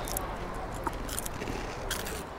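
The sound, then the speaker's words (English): Crisp crunching from biting into tiny one-inch mini chili spring rolls filled with dried shrimp, with three or four sharp, crackly bursts spread over a low, steady background hum, fairly quiet overall and with no clear talking. “This definitely satisfies the crunch factor, which is something I'm always looking for.”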